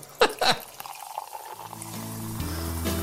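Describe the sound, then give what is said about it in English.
Sekt (sparkling wine) is poured into a glass. A couple of sharp clinks come first, then a steady gurgling stream whose tone climbs in pitch as the glass fills, over a soft fizzy hiss. “Oh, listen to that, eh? Yeah, that's that little bit of sect, isn't it?”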